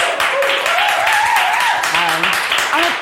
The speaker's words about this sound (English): And with that in mind, what more of a perfect first guest can I get than Chappie Corsandi? So let's have a little round of applause.